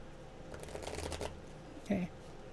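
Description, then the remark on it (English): A deck of tarot cards is shuffled, a quick run of soft riffling flutters followed by a brief tap as the cards settle, with the room otherwise quiet. “Is there anything you want to share before I finish shuffling?”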